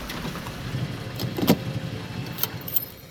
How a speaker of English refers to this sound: Park the car.